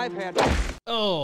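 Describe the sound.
A single heavy, dull thud of a heavy purse striking a person cuts off a man who is speaking; after a brief pause he gasps and talks again.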